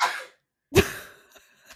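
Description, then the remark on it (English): A single sharp sneeze: a brief breathy lead-in, a short pause, then a loud explosive burst that quickly trails off into quiet breathing. No one speaks. “Bless you.”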